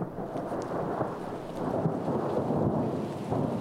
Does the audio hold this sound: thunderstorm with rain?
yes